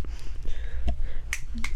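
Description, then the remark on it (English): A crowd at DragCon finger-snapping in place of applause: several sharp, crisp snaps pop out irregularly over a low, steady rumble of background noise, with no talking. “This is how they clap at DragCon.”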